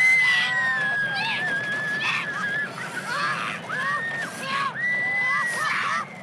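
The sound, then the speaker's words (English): Several people scream loudly and continuously, high sustained shrieks rising and falling together over a rushing, roaring background, like riders on a roller coaster in full swing. “I don't know if you can hear it over my screaming.”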